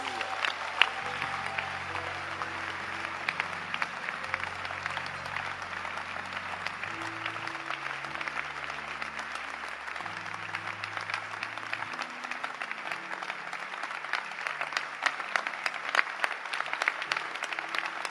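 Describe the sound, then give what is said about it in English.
An audience at a sermon claps steadily and continuously at the preacher's call, a dense wash of hand claps, while low sustained organ or keyboard chords shift underneath throughout. “Clap your hands.”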